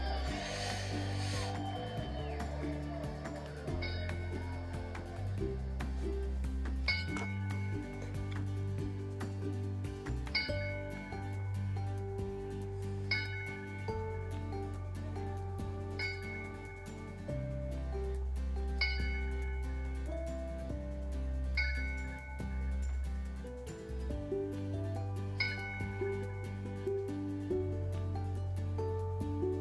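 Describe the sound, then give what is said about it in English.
Bells ring out in a steady, evenly spaced sequence of clear strikes, each tone hanging and overlapping the next, with a sustained low hum beneath. No voices are heard. “And we give Stephen the bells.”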